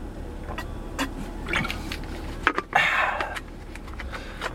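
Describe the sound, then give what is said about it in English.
Someone takes a sip of water and swallows, with a short gulping burst midway, inside a truck stuck in traffic, over a steady low rumble of the idling truck. “Was that a disgusting swallowing sound for you?”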